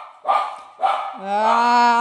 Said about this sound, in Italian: Ah, il cane. Io lo uccido.